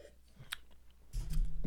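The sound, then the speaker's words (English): A second big gulp of strong French press coffee with creamer: a small wet click, then a loud, low swallowing sound that fills the last half second. No one speaks. “That's my second big gulp of coffee, but here's the kicker.”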